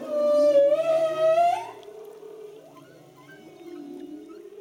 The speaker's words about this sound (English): It was like being dropped in this beautiful concert hall. We could hear numerous male humpback whales make these beautiful sounds.